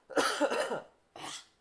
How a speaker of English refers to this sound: That was coming for a while. Cough.